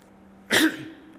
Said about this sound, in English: Sorry for coughing into the mic.